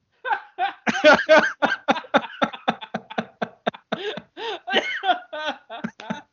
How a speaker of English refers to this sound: Oh man, you made me cough.